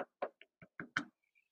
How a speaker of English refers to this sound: And he's knocking at the door of your heart. And he told us in Revelation 3:20, look, I stand at the door and knock.